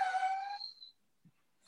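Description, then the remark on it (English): A dog that wants to go outside lets out a single high, thin whimper that trails off after about a second, followed by near silence and a faint soft knock. It is fairly quiet, with no one talking. “Sorry, my dog wants to go outside.”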